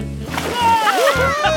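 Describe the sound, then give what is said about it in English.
Water splashes and sloshes steadily for a moment in a pool during a pool party, with wordless voices or tonal sounds gliding up and down over it. “Yeah, yeah, and look at me, Smitty, also splashing around in the water.”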